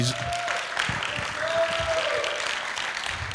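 A crowd applauds steadily, a dense wash of many hands clapping at once, sustained and fairly loud throughout, with a faint tonal whistle or hum drifting through the middle.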